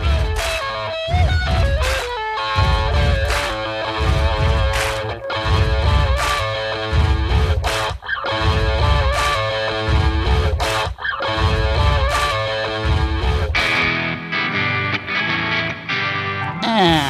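A heavy, layered stomp-stomp-clap rhythm repeats steadily and loudly, made by four band members stomping and clapping in a recording studio and layered to sound like hundreds of people, with singing and distorted instruments playing over it throughout.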